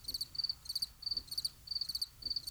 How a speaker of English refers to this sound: That was crickets right there.